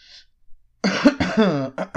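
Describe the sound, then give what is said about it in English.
A loud burst of throat clearing mixed with coughing, rough and raspy, after a brief faint hiss, with short choppy bursts tailing off at the end. “This one, that was me clearing my throat and coughing at the same time,”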